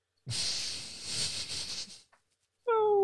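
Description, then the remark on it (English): A long breathy hiss of air gives way to a short pause, then a person's voice launches into a loud, steady, tonal howl that is cut off almost as soon as it begins. “You want me to howl?”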